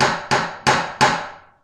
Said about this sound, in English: Then he came back and knocked again at the door of the house.